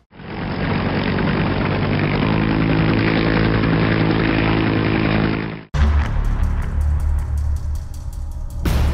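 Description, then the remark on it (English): A loud, steady helicopter engine drones for several seconds, then cuts abruptly to a rapid, rhythmic thumping of spinning rotor blades, with no voices. “Okay, we're at the controls of the helicopter. Let's go.”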